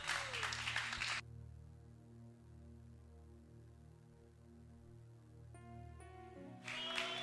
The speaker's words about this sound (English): Is this all the clapping you can do for such beautiful ministration?